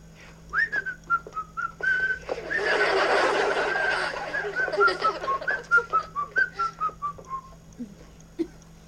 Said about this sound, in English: Well, if that isn't enough, then you whistle. You can't walk, whistle, and be angry at the same time.